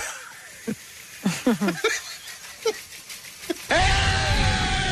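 A man lets out a few short, strained vocal bursts, then breaks into a sustained, full-throated scream as loud as he can, shouting "They did it!" about the Knicks, holding loud until the end.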